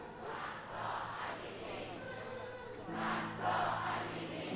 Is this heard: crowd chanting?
yes